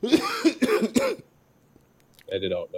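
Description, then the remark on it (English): A quick burst of several loud coughs in a rough rhythm during the first second, then near-silence before a voice starts talking. “Sorry, I was like coughing right there.”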